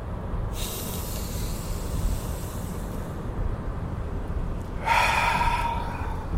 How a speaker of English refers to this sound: I'm just going to take 3 deep breaths. 3. 3 is the magic number. Here we go. Go.